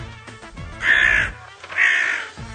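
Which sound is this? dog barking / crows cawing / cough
crows cawing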